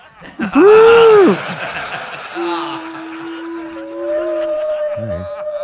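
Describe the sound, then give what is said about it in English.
A voice does a loud whale-call impression: first a rising-and-falling moaning swoop, then long, steady, droning hums that shift to a higher pitch, ending with a brief low warble. “I guess there'll be whales. Whales.”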